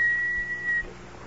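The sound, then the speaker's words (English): A person whistles a single steady, held note of a song tune for under a second, clear, then stops, leaving a low background hum. “Why do you keep whistling that song?”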